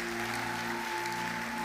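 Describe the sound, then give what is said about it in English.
An audience claps to celebrate Jesus in a dense, steady wash of applause, with sustained keyboard or organ tones humming underneath throughout. “If you know you are the one, clap and celebrate Jesus.”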